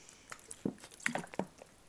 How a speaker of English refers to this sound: I'm gonna take a drink of water, hold on. ASMR.